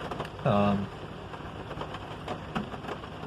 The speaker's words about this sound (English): And it's raining really hard, but I'm going out to get a couple things.